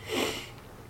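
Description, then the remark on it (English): A quick, breathy sniff through the nose, like someone fighting an oncoming sneeze, followed by a faint hiss of breath. No sneeze arrives, and no one speaks. “Sorry, sneeze won't come out.”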